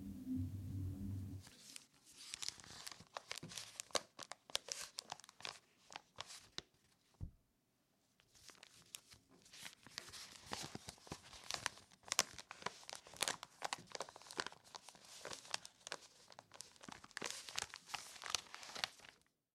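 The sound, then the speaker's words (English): Pages of the Daily Texan, a college newspaper, crinkling and rustling, a continuous busy crackle of sheets being handled and shuffled, with a brief pause midway before the crumpling resumes. No voices. “We are one of the few colleges in the country that still enjoy the sound of our paper.”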